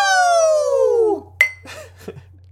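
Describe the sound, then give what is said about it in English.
A long, falling tonal sweep gives way to a single sharp clink of beer glasses in a toast, with a brief bright ring, followed by a few faint, scattered clatters. “Cheers our glasses and down our beers.”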